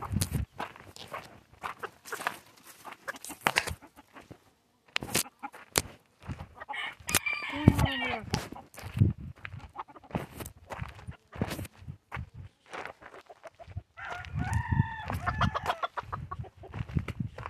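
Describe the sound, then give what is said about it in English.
Turkeys cluck in short, scattered bursts, broken by two louder warbling gobbles, with scuffling footsteps underneath and no one talking. “Got a wounded, turkey down. Two turkeys down. Two turkeys and a missing MIA.”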